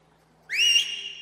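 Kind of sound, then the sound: human body sound, person whistling loudly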